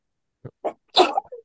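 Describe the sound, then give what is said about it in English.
A single sneeze: two short catching breaths build up, then a sharp, loud burst of breathy noise, trailing off into a brief sniff. No talking. “Sorry, I'm gonna sneeze.”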